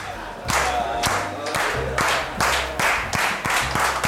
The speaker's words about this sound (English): Wow. That was one of the better slow claps we've had at Las Perlas. We're getting better every week.